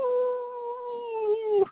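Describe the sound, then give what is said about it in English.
A person lets out a sustained, slightly wavering howl in imitation of a dog, one steady voiced note held for under two seconds before breaking off at the end. “Where's your dog call, buddy?”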